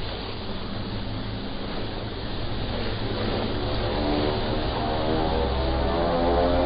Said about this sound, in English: Sato flew from the cave in his rented boat.